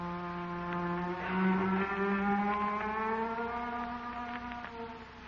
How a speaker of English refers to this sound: But while he was out at the mysterious Willoughby place, a strange thing happened. First, the door opened. Then there were hollow footsteps. And then a weird, ghostly sound.